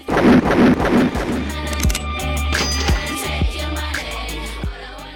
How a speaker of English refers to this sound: Finally, of course, we have those samples of the gunshots. That's a little sample fragment that happens. And that those actually come from the game Street Fighter,